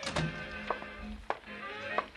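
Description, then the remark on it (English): A door shuts with a few muffled thunks and taps spread over two seconds, over a steady, faint tonal background hum. “Come in, Russ. Close the door.”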